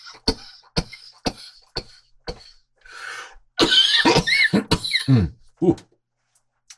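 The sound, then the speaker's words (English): A series of sharp coughs after inhaling hash smoke comes in a rapid rhythm, followed by a harsher, raspy fit of hacking and wheezing breaths that trails off into silence. “Can get deep into the lungs and cause that coughing.”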